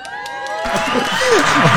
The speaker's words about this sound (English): Let's give him a round of applause, baby.